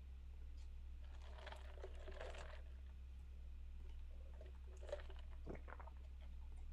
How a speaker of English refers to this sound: It's so quiet, I could hear you know what? … taking a gulp of his iced coffee.